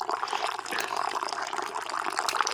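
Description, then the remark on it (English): A steady stream of tea pours into a cup, a continuous splashing trickle that holds an even level for a couple of seconds with no voices over it. “I'm pouring my tea, gentlemen.”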